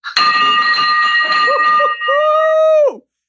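A loud bell rings continuously for nearly three seconds, its bright, shimmering overtones sustained, while a voice whoops over it before the sound cuts off abruptly.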